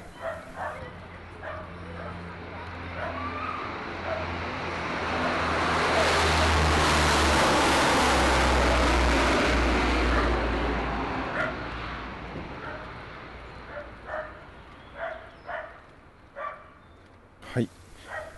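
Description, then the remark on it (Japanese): An airplane at Futenma Air Base roars, swelling over several seconds into a loud, broad rushing drone, then fading away, with short bark-like yelps popping out at the start and end. “普天間基地で飛行機の音でした。”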